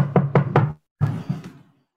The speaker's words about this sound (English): is still going to knock on the open door.